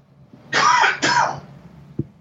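Two loud, back-to-back bursts of coughing and throat clearing, harsh and breathy, followed by a brief soft thump before quiet.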